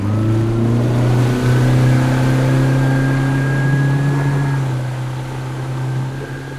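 The outboard motor of a skiff is started and runs steadily as the boat leaves its mooring, its droning hum rising slightly in pitch as it revs, then easing off a little toward the end. No voices.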